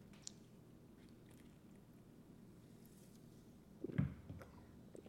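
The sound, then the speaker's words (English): A single short sip of Sunkist Zero, a zero-sugar soda, near the end, a soft wet slurp over a low steady hum, with no talking. “I'm going to take a sip of this.”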